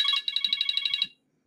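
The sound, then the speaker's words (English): A mobile phone ringtone chirps out a quick electronic trill, about a dozen rapid bright pulses over roughly a second, clear, then cuts off abruptly into silence. “I thought my phone was on Do Not Disturb, but I guess not.”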